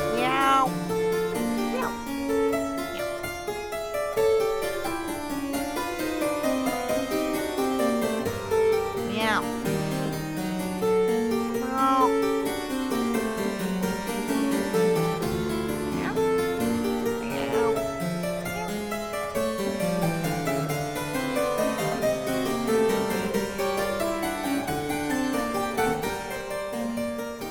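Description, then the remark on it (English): A harpsichord plays a busy fugue, several interweaving melodic lines moving up and down at one steady, unchanging loudness for the whole stretch, bright with no pauses. “The harpsichord only gets to play one dynamic all the time.”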